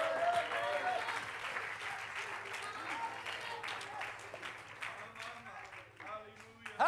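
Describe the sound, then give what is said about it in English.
An audience at a sermon claps steadily to praise God, a dense wash of many hands that stays fairly loud throughout, with murmuring voices mixed in beneath the applause. “Oh, somebody clap your hands and love Him.”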